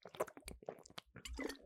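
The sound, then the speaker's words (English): Wet mouth sounds of someone gulping water, a rapid series of swallows and slurps with short breaths between them, fairly loud and with no one talking. “I just drank that water like an iPad kid. I like gulped it like I just ran outside.”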